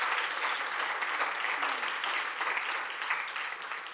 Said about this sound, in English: Yes, round of applause.